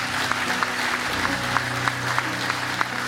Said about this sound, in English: So good. Yeah, you can clap.